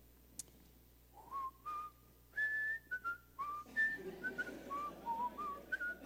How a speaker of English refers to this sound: I think it was that one, that hymn, How Great Thou Art, or something. And I was whistling that